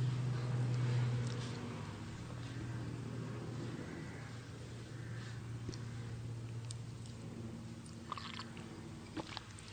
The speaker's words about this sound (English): Can you hear when the helicopter's going? Okay, so let the helicopter go.